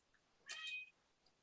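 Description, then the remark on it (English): A single short, high-pitched meow or chirp from a house cat, lasting under half a second against a quiet background, with no talking. “Now your cats are doing the imitation of Jerry Lewis.”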